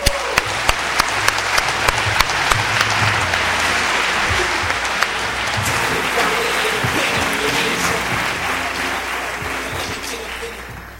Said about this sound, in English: Please give a round of applause to Bakari Kitwana.